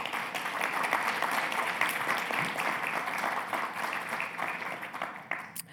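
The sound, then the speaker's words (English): A crowd breaks into steady, sustained applause for the caregivers, dense overlapping claps at an even volume for several seconds before tapering off slightly at the end. “So those of you who came with a caregiver, a spouse, a partner, a friend, let's just take a minute and give our caregivers a round of applause.”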